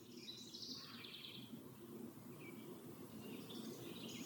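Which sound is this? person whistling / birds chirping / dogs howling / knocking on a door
birds chirping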